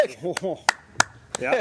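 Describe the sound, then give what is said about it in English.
Four sharp hand claps land at an even, deliberate pace, a slow clap, while people talk and laugh underneath. “A slow clap or like a...”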